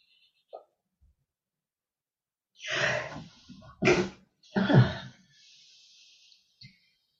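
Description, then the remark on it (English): A loud sneeze: a few sharp, breathy bursts in quick succession following a drawn-in breath, then quiet. No one speaks. “Bless you.”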